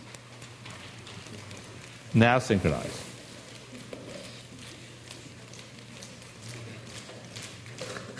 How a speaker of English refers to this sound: Well, we can do a test, right? Why don't we just clap two fingers?